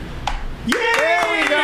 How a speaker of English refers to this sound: Give a round of applause in the studio. Come on. My guy came in. Make some noise for the guy.